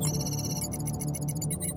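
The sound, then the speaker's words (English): A synthetic torpedo-firing sound effect, a torpedo fired at the coordinates Echo 1: a loud, continuous electronic tone with a low hum underneath and bright, stuttering bleeps above, sonar-like and with no voices. “If you would be so kind, would you please fire a torpedo at the coordinates Echo 1?”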